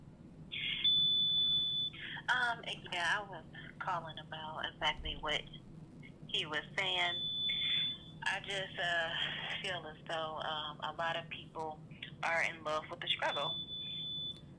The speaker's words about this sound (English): Yeah, what's that beeping though? I don't know. I'm trying to hear you, but some keep I get a lot of feedback though from your phone.